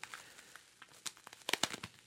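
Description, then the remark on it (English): Soft crinkling and rustling of tissue paper, bubble wrap and a rubber band as a ceramic eggplant is unwrapped, in irregular bursts that build to a few sharper crackles near the end, with no one talking. “We got tissue paper, bubble wrap, rubber band.”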